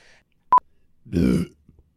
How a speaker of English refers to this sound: That's what your burp looks like. Sweet. It looks like my cough's baby. Looks pretty healthy.